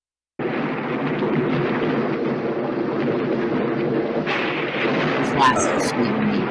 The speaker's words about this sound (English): You're just going to hear a thunderstorm, Mike.